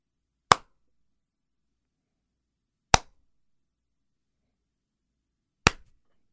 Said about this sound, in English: That move was from a piece that I co-wrote entitled The Sarcastic Clapping Family of Southampton.